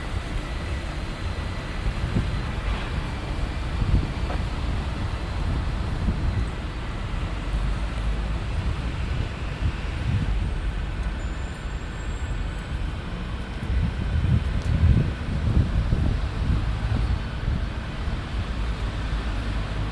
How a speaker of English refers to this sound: I'm off to the British Museum and I'm just heading through Bloomsbury Square Gardens.